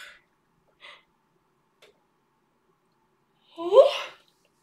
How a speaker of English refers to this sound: And two, another yawn, sorry.